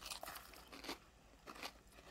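Someone eats an ice cream cone, with three or four soft, crisp crunching bites spaced irregularly, each a short crackly burst over a quiet background. No one speaks.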